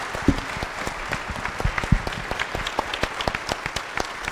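An audience applauds steadily, many hands clapping in a dense, irregular patter with a few sharper claps standing out, sustained at moderate loudness for several seconds with no one speaking.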